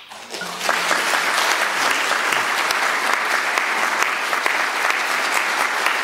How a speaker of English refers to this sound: How many times have you heard a priest give such a powerful homily that the parishioners applauded him?